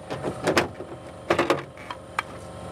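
A damaged, stuck rally car door being forced open by a crew member lying on his back with both feet pressed against it, with a series of heavy metallic thumps and creaks in irregular bursts, fairly loud, with no talking.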